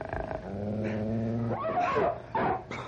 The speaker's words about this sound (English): Come on, wolves! I'll fight you with my bare hands if I have to!